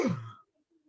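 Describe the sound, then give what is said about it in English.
A single short, breathy gasp by one voice, imitating the collective gasp of 80,000 people in an Olympic stadium in Athens as the torch runner tripped and fell, lasting under half a second before falling to near silence. “It was a collective gasp.”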